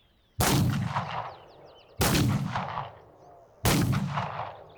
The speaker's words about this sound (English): Three shots pierce the night air. Then all is quiet, and the coach rumbles on.